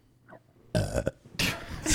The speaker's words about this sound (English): Please. Excuse me. Beat me to the punch. Later. Were you going to burp too? I almost we had just to. Just sign off with burp.